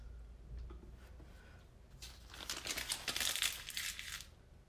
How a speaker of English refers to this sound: Now I want you to crumple up that piece of paper. Hold on to it real tight.